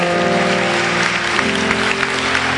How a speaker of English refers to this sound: He got all correct. Clap for him, you can see. Hey!